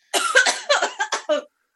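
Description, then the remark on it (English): A rapid fit of harsh, choking coughs after drinking from a can of roughly 8% alcohol that smells like rubbing alcohol, about six loud bursts in quick succession, each one raspy and breathy, ending abruptly with no talking. “Choking and can't breathing.”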